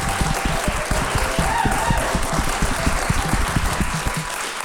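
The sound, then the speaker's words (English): A crowd applauds steadily, many hands clapping in a dense, continuous patter that stays loud and even for several seconds without pause. “who deserves a full round of applause.”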